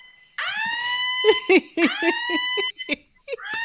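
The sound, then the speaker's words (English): A voice imitates a wailing alarm on a bed that goes off if someone comes within 5 feet, a loud rising tone that swoops up twice and holds, with bursts of laughter breaking in underneath and after it. “She'll put an alarm on the bed in case someone comes within 5 feet.”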